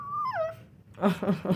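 A puppy shut in a crate whimpers: one high, drawn-out whine that slides downward, then a pause and three short, evenly spaced whiny yelps, fairly loud.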